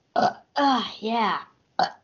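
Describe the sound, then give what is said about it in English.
Two long, drawn-out burps back to back, fairly loud, with short guttural bursts just before and after them. “Double burp.”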